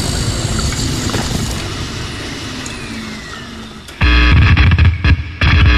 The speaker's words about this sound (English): Do you feel that? Don't worry, we should be safe down here. Maybe not. That wall is coming down! That's not an earthquake. Get back! Some sort of giant drill? We're doomed!